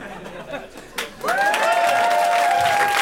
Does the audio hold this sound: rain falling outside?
no